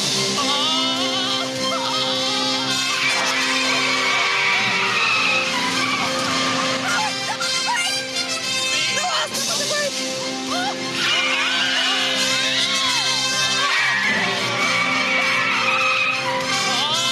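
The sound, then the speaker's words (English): Loud, continuous tire screeching and skidding from several cars, with revving engines and high sliding squeals rising and falling throughout, like a frantic car chase. “I definitely did not include the end so that you guys wearing headphones had to listen to all the cars.”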